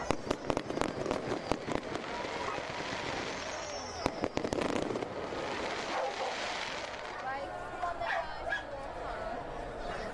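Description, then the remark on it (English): Red and gold fireworks burst over a city in Merseyside in a rapid string of sharp bangs and crackles, thickest in the first few seconds, then thinning to scattered pops over a steady outdoor rumble with faint voices. “Fireworks over Merseyside. Red and gold.”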